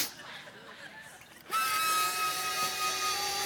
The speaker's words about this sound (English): All right, then I have a vacuum cleaner.